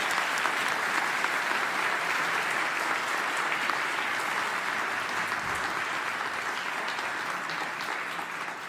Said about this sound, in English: Let's give a clap for them as they come up, right?